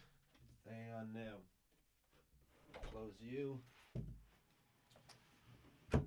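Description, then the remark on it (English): A studio door creaks slowly on its hinges in two drawn-out groans, then shuts with a solid thud, followed moments later by a sharp click of the latch. “I forgot to even close the door of the studio, ensuring the soundproofing and the high audio quality.”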